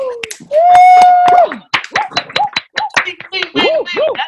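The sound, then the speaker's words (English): Scattered, uneven clapping and snapping from a handful of participants on a video call with their mics unmuted, mixed with whoops, cheering voices and a brief sustained whistle-like tone, all lively. “Everybody, unmute your mics right now and give me a huge round of applause.”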